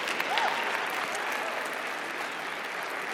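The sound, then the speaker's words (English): Steady applause from a group of women, a dense, even patter of many hands clapping at once with no pauses, fairly loud and sustained throughout. “That's all the ladies in the room clapping right now.”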